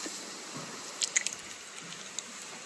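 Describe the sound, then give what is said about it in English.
Quiet ASMR eating sounds of someone chewing crab cheesy fire noodles, a spicy cheesy noodle dish: a few soft, wet squishes and smacks over a steady background hiss, with no one talking. “This is crab cheesy fire noodles ASMR.”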